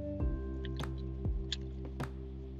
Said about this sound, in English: Sorry, I had to drink some water.